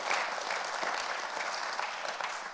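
An audience breaks into sustained applause as a hand clap of praise to Jesus, many hands clapping together in a dense, steady wash of sound with no talking over it.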